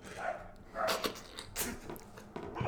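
A dog barks several times in short, sharp bursts spread irregularly across a few seconds, not very loud, with no one speaking over it.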